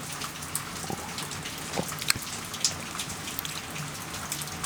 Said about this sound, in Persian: چه بارونی میاد.